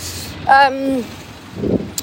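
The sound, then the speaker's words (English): A motorbike outside whines past, its pitch sliding downward over about half a second before fading, followed by a brief low muffled rumble and a faint click. “Doesn't he know I'm recording a podcast, Mr. Motorbike Person?”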